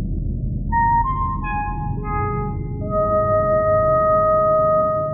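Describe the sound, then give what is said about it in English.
A five-tone musical signal melody: sustained electronic-sounding notes enter one after another and hold, stacking into a ringing chord over a steady low rumble, fairly loud, with no talking. “This is the tones that we all know and love. Play the five tones.”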